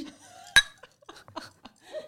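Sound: drink glasses clinking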